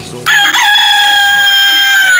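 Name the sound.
rooster crowing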